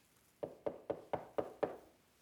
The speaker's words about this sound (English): If you had somebody come knocking at your door